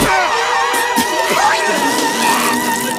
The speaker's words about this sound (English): But needless to say, everyone spits out their wine and flees screaming, leaving Sims alone at the buffet.